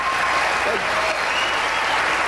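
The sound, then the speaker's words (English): Steady audience applause fills the whole stretch, a dense, even wash of many hands clapping at a constant loud level with no voices standing out. “I could applaud.”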